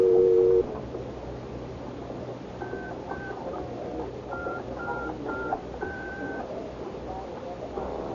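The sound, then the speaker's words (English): A pay phone in a phone booth gives a steady dial tone that hums for under a second. A quick run of touch-tone keypad beeps follows as a number is dialed, one digit after another, over a low background rumble. “I crossed to the phone booth, and following instructions, I picked it up to listen for the dial tone before I dropped the dime in.”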